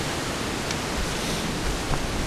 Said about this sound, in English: And so if I'm out on a day where it is a strong wind like this, it's always a good idea to try to find a spot that isn't so windy.